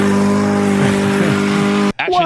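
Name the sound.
lawn mower engine revving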